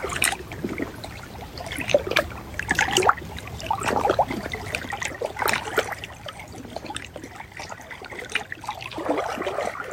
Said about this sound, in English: So allow the sounds of the waters to meet the water within you.